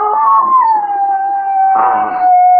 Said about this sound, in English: I suppose you don't hear it now, Anna. Charles. The neighbor's dog's at it again, Mrs. Edney. The neighbor's dog? You know, there isn't a dog within miles of here.